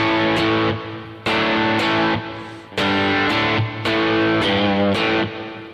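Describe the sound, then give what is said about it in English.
Loud, distorted electric guitar chords played through an amp with delay and reverb effects added, strummed in a steady rhythm, each ringing out with echoing delay repeats and a wide, spacious reverb tail. No voices, just the amplified instrument. “Okay, and now I'm going to add some delays and reverb and listen to it now.”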